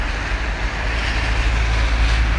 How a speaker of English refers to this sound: Fucking car.